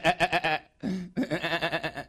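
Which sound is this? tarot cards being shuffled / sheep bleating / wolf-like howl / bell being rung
sheep bleating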